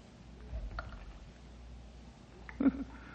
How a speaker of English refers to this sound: Hey, what's that dripping I hear? Could be an underground spring, I reckon. Or moisture on the roof of this.